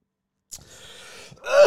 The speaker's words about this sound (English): Lingering COVID cough.